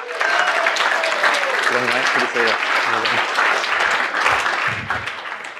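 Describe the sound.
A large crowd applauds loudly and steadily throughout, a dense wash of clapping with a few voices calling out or cheering beneath it, welcoming a speaker introduced to present a talk on the aging brain.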